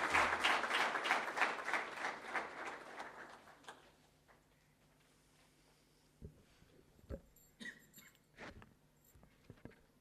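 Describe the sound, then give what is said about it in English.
An audience at Ramakrishna Math applauds loudly for a physically handicapped guest, with dense, rapid clapping for about four seconds, then it fades out, leaving quiet with a few scattered knocks and shuffling sounds. “So I just want to have a big round of clap for him.”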